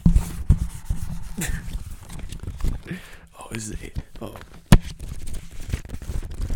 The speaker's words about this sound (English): That's paper. You guys like that? You like that? You like that? You like paper?